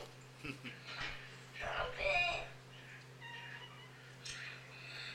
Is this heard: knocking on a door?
no